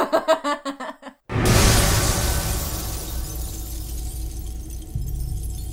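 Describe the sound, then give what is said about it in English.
A movie sound effect: a few quick rhythmic bursts give way to a sudden, loud glass-shattering crash, then a long, steady hiss of falling debris, unbroken, with no voices. “That just doesn't sound like glass. It just sounds like you like turned on a hose or something.”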